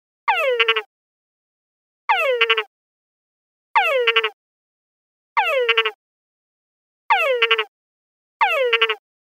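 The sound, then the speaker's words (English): An urban frog calls six times at an even pace, each call a short, bright downward-sweeping note that ends in a quick buzzy, pulsed flourish, with silence between calls. “Not very exciting as frog calls go, but let's listen to the urban one and see if there's a difference.”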